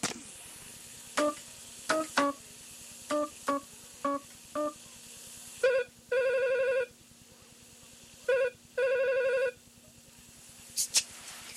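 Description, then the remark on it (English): A quick series of short electronic dialing beeps as a number found on a phone is called, then the line ringing in two long buzzing bursts with a pause between, clear, with a faint steady hum underneath. “Say, I wonder why Elann would be carrying a celery phone. Hey, and there's a number. Maybe this'll help.”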